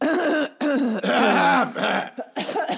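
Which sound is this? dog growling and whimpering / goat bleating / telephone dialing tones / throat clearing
throat clearing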